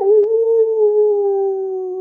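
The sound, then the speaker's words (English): A person imitates a dog's howl with one long, steady, fairly loud note that holds for about two seconds, with no other sounds around it. “You're getting better and better at barking.”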